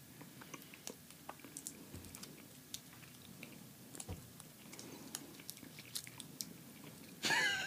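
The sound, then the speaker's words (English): Crunchy chewing with irregular sharp clicks and crackles as teeth work through the hard shell of a jelly bean, ending in a brief louder burst of noise. “I thought it was about to be tasting bad, but then the more I chew it. Yeah, the hard shell, they kind of throw you off.”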